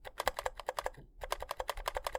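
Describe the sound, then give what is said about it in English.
Steady typing on a new computer keyboard with rapid, evenly spaced keystrokes, a brief pause midway, then more typing. The clicks sound soft, solid and not very high-pitched rather than rattly, with no voices. “As opposed to my new keyboard.”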